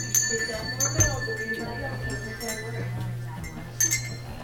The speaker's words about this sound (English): I'm waiting to see what kind of bells we've got left over here.